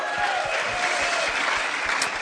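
A crowd claps steadily, a dense wash of many hands filling the whole stretch at a fairly loud, even level, with no voices standing out.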